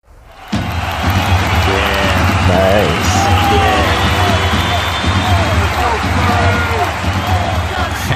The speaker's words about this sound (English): Yeah, and as soon as you get into the lower areas of this tavern, the hidden lower areas, the screaming and cheering becomes a little more clear.